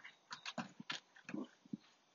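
Two puppies make a quick series of short yips and snuffling bursts, about eight brief sounds in two seconds with no one talking.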